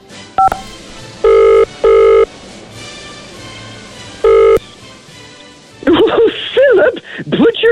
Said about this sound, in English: Back on, the phone is ringing.